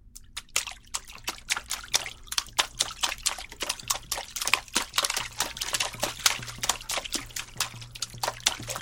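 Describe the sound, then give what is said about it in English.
Fingertips tap and patter on a water surface as a musical playing technique, producing a quick, irregular stream of small splashes and drips, moderately loud, with no voices over it. “The most simple is just, you know, playing on top of the water with your fingertips, kind of like.”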